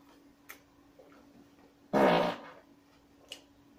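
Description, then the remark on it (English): A single loud, buzzy raspberry blown with the lips, a mouth-made fart noise lasting about half a second, with a few faint clicks before and after against a quiet background. “Big fart noise.”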